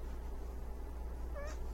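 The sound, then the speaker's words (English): A single short cat meow rises briefly near the end, somewhat soft against a steady low background hum, with no talking. “She just made a noise. She just meowed.”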